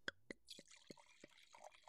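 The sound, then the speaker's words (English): Yellowtail Chardonnay wine glugs from a freshly opened bottle into a glass, a quiet run of sharp drips and splashes over a soft trickling stream, with no one talking. “But anyways, for SMR sakes, let's crack it open. Pour it up, pour it up.”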